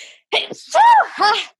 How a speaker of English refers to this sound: Hold on, I have to sneeze.